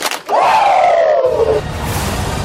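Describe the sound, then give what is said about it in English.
Two quick, sharp claps, then a loud, drawn-out "wooo" yell in the style of wrestler Ric Flair that starts high and slowly slides down in pitch for over a second before fading into a noisy hiss. “Well, give me two claps and a Ric Flair.”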